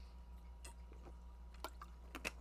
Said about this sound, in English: Hold on, I'm going to take a sip of Gatorade because my mouth's dry.